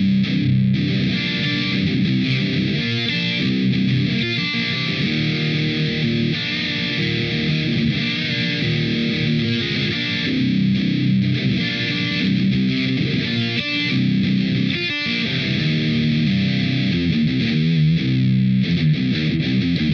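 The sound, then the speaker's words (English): Heavily distorted high-gain electric guitar plays continuous chugging riffs through channel 2 of a Savage 120 amplifier for the whole stretch, loud and dense with a dark, saturated tone and no voices. “Here is Ingle Savage 120 Channel 2 utilizing …, and ….”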